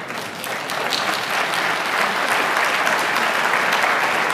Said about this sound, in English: We can clap for God, that's okay.